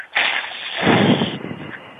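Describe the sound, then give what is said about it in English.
A steady, breathy hiss of air forced out through the teeth, made as a breathing exercise while moving the diaphragm in toward the spine, lasting about two seconds with no speech, growing fuller midway before thinning out toward the end. “the air escapes through your teeth. This is in practice. And make a hissing sound right now.”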